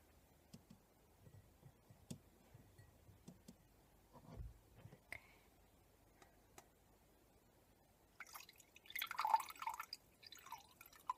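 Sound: water being poured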